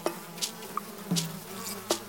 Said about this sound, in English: Cleopatra designed the first buzzing sex toy by filling a hollow gourd with live bees